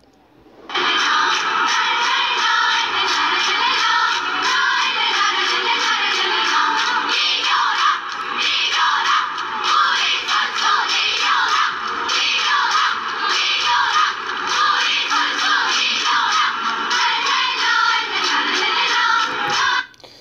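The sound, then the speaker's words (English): A crowd of women cheers and chants in unison at a game while their team is losing badly, loud and unbroken for nearly twenty seconds, with steady rhythmic pulses and a thin, tinny tone. “at this game, their team is losing, everyone's sitting there just watching this terrible game of people, it's not like a good matchup, and they're getting decimated, and yet these women are in the crowd, you know, well, here, we'll give it a listen.”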